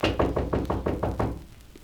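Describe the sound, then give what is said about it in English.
A quick run of about six firm, evenly spaced knocks on the door of Nora's suite on the 18th floor, ending in a short quiet stretch with no voices. “Should we knock?”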